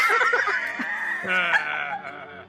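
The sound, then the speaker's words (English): A puppy yips and whimpers in high, whiny cries that run together without a break, fairly loud, with no talking. “It's puppy time.”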